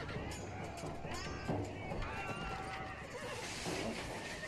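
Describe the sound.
In a film scene where Michelangelo rides in backwards on a horse, a horse whinnies over a steady clatter of clip-clopping hooves in a loud, busy mix, with muffled voices and other commotion running underneath.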